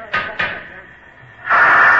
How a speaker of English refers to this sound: You see, it had 40 pounds of pressure in it, and that had to be blown out before the door could be opened.